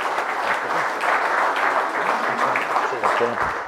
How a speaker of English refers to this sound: But today he's representing being a football director of the Melbourne Storm. I wish everyone to give him a round of applause, Frank Panisi.